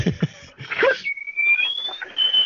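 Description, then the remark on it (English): A dog that needs to go outside whines, a thin, high, drawn-out whine that slowly rises in pitch, after a few short bursts of rustling and breathy noise. “the dog needs to go outside.”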